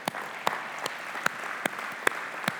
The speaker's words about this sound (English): all right, they baptized 3 people in their congregation who had given, yes, we need to clap for that.